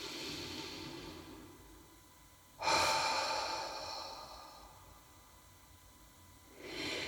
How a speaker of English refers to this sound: And just take a moment to take three really deep, big breaths. And with each exhalation, just feel your body relax. Breathing in.